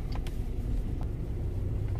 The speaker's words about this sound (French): Là, je suis en Italie, en Toscane. Vous voyez les petites routes. Hein. C'est les petites routes de campagne. Justement, j'ai croisé une voiture, il faut que je m'enlève, il faut qu'elle passe, sinon elle passe pas.